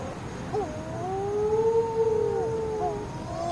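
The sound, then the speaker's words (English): Long, drawn-out moaning wails of wedge-tailed shearwaters, rising and falling slowly in pitch like an eerie siren, steady, with no one talking. “Wedge tailed shearwater tragedy”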